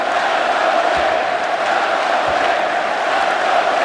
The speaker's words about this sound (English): Crowd serenading their team now. Let's go, Knicks.